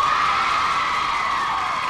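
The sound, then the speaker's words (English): A large studio audience cheers and whoops loudly and continuously, picked up by microphones hidden in the chairs: a dense wall of excited voices with high shouts rising above the roar, sustained without a break. “You know, I had microphones hidden in the chairs, you know, and that's what gave that big, beautiful crowd reaction sound.”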